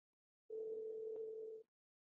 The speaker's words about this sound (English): Ringing.